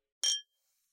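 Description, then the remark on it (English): A single bright, sharp clink of glasses touching in a toast, with a short ringing tone that fades quickly into silence. “Let's close the tab. Let's close it, man. Cheers.”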